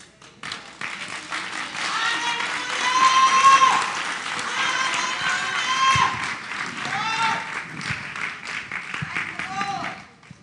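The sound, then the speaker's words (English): An audience claps together in a dense, steady burst lasting about ten seconds, loud throughout, with raised voices and cheering mixed into the applause. “Now we're about to clap because the Bible says he don't chastise except he loves.”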